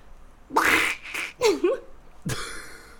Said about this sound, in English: She just hammers them and they're hard-boiled eggs. And it plays squelch shot, wav. Like, yeah, yeah. The exactly. Well, that's more of a fucking that's a fucking Donald Duck ass sound.